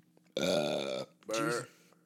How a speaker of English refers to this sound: I'll edit those burps out. No, don't, man. What the fuck? Why would you?